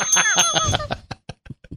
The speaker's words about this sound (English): You didn't ring the bell on that one.